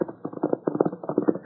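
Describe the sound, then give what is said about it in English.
Muffled hoofbeats of Silver, a great white horse, in a radio sound effect as the Lone Ranger rides to meet Tonto: a quick, steady galloping rhythm, a run of dull thuds repeating evenly for a second or so with no voices over them. “The Lone Ranger, quickly removing the disguise from his face, mounted Silver and rode to meet his faithful Indian friend Tonto.”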